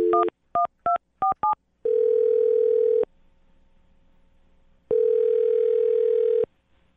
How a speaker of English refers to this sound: I'm going to dial her phone number right now and get her on the phone and find out why she's not calling you back.